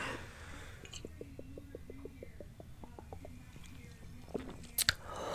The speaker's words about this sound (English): I need to take a little sippy, though, because a bitch can't fucking I'm not even breathing, really.